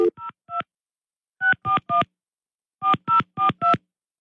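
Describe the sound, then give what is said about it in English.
Touch-tone phone dialing: ten short, clear beeps in three quick clusters of three, three and four, loud, with no voices; a call placed live on the radio. “If you're watching on the cam or you're listening to your radio, you hear a phone ring right now.”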